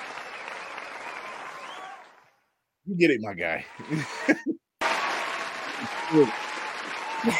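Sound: applause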